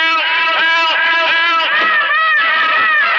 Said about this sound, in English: Voices screamed in every room.